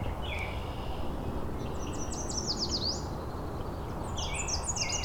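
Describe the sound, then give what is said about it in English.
A Nashville warbler sings thin, high notes: a brief opening, then a run of quick, repeated descending chirps, and another bright phrase near the end, over steady low rumbling background noise. “There's a Nashville warbler in front of me.”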